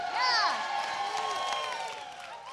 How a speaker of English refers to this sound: Can we actually seriously give a huge, I'm talking huge cheer. I'm going to count to three. And I want us to cheer so loudly for the people that stepped into the tithe challenge. One, two, three.